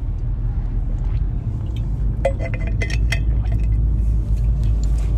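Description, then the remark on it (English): A steady, low road rumble from inside a car driving in peak hour traffic in the rain in Queensland, with a brief cluster of light clinks and rattles partway through. No one speaks. “I'm driving in peak hour traffic and it's really hectic today.”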